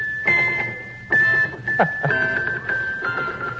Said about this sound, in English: Look at Squeaky with those little bells. You see him over there? Look at Squeaky pick those little bells up and shake them. Big smile on his face.